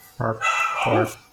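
Dogs bark in two short, loud bursts about half a second apart, with a brief yelping quality and some background noise between them.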